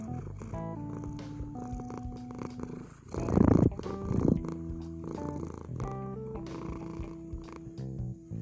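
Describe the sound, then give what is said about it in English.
A cat named Billy purrs steadily right next to the speaker for several seconds, a soft continuous rumble that swells louder for a moment midway before settling back. No one speaks. “Billy is still right here next to me. Let's see if we could get Billy Purr on there.”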